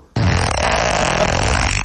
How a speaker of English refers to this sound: and then there's another fart. Yeah, it's a double there's donut. There's a fart at the front, too. It's a double donut.